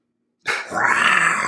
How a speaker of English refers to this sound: That's not a lion. That's a tiger.